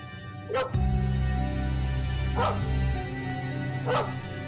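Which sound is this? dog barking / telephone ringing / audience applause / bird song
dog barking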